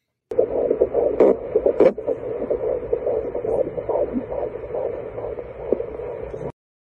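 The heartbeat of the speaker's unborn child on an ultrasound monitor: fast, steady whooshing pulses over a bed of static hiss, loud, running continuously for about six seconds with no talking.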